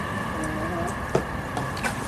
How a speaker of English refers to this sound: Train! It's the light rail, but they've been messing us up.